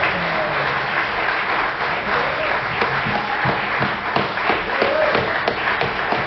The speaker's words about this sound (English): He's clapping. Let's give the Lord a hand. Amen.